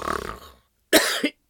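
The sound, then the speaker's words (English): A harsh cough: one long rasping burst followed quickly by a shorter one, then another beginning at the very end, after a soft breathy sound and a brief silence. “I can't do that without coughing.”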